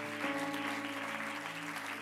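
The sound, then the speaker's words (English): The Lighthouse church audience claps hands together in a dense, steady wash of applause, fairly loud and continuous, with a sustained keyboard or organ tone droning underneath. “Come on, clap your hands, Lighthouse, if you're believing for that.”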